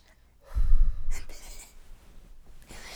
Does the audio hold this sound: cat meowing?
no